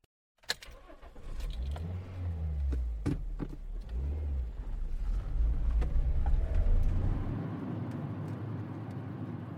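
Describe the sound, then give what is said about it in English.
A car engine starts after a sharp click, then rumbles and revs as the vehicle pulls away in Fort William and drives steadily along scenic roads toward the coast, with a low continuous road drone and occasional knocks, fairly loud. “Back in Fort William, I bid farewell to the crew and make my way to the car. Ahead of me, 42 miles of scenic roads to the coast.”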